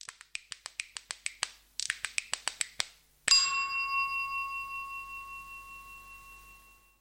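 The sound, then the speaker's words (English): A spoon interlude sound before a mindfulness exercise: two quick runs of light metallic spoon taps, followed by one struck ring that hums on with a wavering, slowly fading tone. No one speaks. “So without further ado, after this next spoon interlude, we'll go straight into the exercise.”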